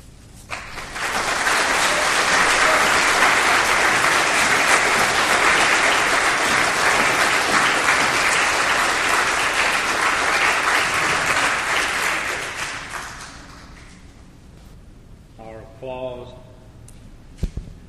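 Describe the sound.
A large crowd applauds steadily for about twelve seconds, a dense wash of clapping that fades out, followed by a brief quiet moment and a faint voice starting to speak.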